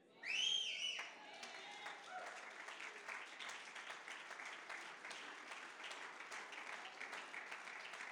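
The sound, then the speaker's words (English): In a church, a man standing at the back of the audience lets out a single loud, piercing whistle lasting about a second, then a large crowd breaks into steady, sustained applause and scattered cheering. “There's a gentleman that stands up in our back, and if he whistles, it's just a sign that he's overcome.”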